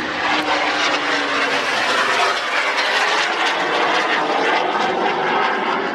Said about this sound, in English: Is that jet-powered Burkut? That is not a Mall. That was not a Mall. No, that was very fast jet aircraft